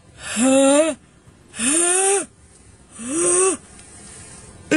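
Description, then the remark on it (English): A voice acts out a sneeze into a sleeve in slow motion as a demonstration: three loud, drawn-out, breathy vocal swells, each rising then sagging in pitch, separated by short pauses. “Achoo. My sleeve got the germs. My hands didn't.”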